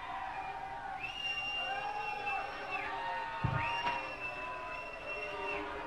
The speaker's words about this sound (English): Of course they do. They're yelling Lou.